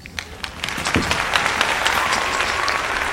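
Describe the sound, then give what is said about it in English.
An audience claps steadily for about three seconds, a dense crackle of many hands that swells quickly after a few scattered first claps and stays at an even, lively level. “Love the clapping.”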